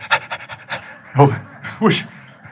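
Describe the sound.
A person imitates a happy dog panting, with a quick run of breathy huffs followed by a couple of louder, voiced gasps.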